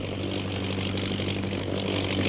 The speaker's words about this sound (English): Listen. The plane. It's coming back. Look, the natives have seen it. They've stopped.